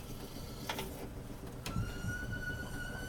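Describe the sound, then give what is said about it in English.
A popcorn machine's stirrer, still switched on after the kettle has been turned off, runs with a steady low mechanical hum and rattle, broken by two brief clattering bursts before a thin, even whine settles in over the motor. “And it's still stirring because the stirrer is still on.”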